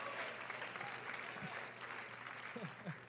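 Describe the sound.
A church audience claps hands unto the Lord during a sermon in a sustained, dense burst of applause, with scattered voices calling out faintly underneath.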